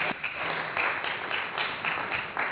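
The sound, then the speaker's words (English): An audience at an online-streamed worship service applauds the band, steadily, a dense wash of many hands clapping that swells and dips in waves, fairly soft overall, with no voices standing out. “Let's have another big round of applause for our band, ….”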